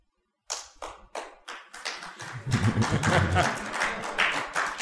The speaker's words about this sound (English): After all of that resounding applause. Oh, yeah. Yeah, yeah. They're like, I think I want to clap, but I'm not sure, man.